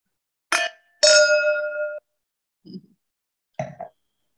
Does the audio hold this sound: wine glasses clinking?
yes